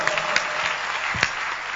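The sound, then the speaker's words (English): An audience in the Bread of Life Cathedral claps their hands in a dense, steady wash of applause, many overlapping claps blending into a continuous crackle with a few sharper claps standing out. “Can you clap your hands already?”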